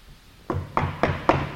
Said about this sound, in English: And I can picture, you've never thought of this, I've never thought of this. Maybe you have, but they would have had to knock on the doors.